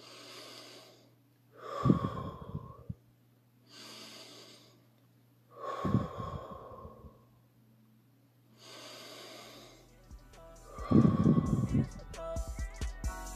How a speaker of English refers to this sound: take 3 to 10 deep breaths and choose love.